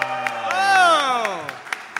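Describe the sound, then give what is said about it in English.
Steady, evenly spaced claps, about seven sharp hits in two seconds, sound beneath a sustained, harmonic vocal-like tone that rises and then slides downward in pitch. “You got to get a clap for each.”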